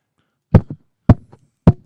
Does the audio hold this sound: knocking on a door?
yes